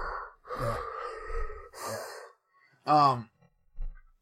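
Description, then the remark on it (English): A person's voice imitates the mechanical respirator of Forest Whitaker's character from Rogue One, with a few harsh, hissing breaths in and out, a short raspy voiced wheeze, then a faint final puff. Fairly loud, with no other talk. “That has a little breathing apparatus, and every time he breathes...”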